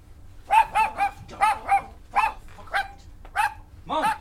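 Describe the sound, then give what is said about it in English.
A dog barks about ten times in quick, uneven succession, fairly loud, each bark short and sharp with a slight yelp to it. “Keep this dog downstairs.”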